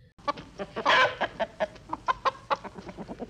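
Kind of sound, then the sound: vocal imitation, person imitating chicken clucking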